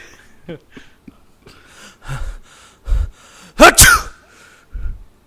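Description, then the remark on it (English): A person fakes a sneeze: a few short gasping inhales build up, then one loud, explosive sneeze burst, followed by a brief breathy sound. “You get one more chance at a fake sneeze or you're not making the team.”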